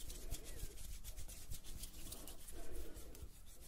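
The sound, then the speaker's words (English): Soft rubbing and friction as palms warm a strength 4 hair wax back and forth, in steady swishing strokes with faint tacky squelches, continuous for a few seconds with no talking. “Warm it up in my hands.”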